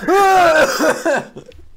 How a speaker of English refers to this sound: Are you all right? He's gone down the wrong hole. Both coughing.